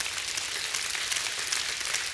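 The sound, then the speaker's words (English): An audience giving God a hand clap of praise, many hands clapping at once in a dense, even crackle that holds steady for a couple of seconds with no voices over it. “Do you give God a hand clap of praise right there?”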